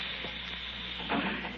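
Gas hisses steadily from a gas jet that someone has turned on, a continuous breathy rush with a faint low hum beneath it, swelling slightly louder for a moment near the end.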